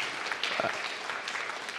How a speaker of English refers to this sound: Yeah, you can clap. That's great. That's wonderful.